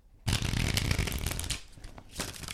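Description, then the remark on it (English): A deck of cards is shuffled for a card reading, a dense papery riffle that starts abruptly, rattles steadily for about two seconds, briefly eases, then surges again. “you're going to shuffle the deck until it feels right”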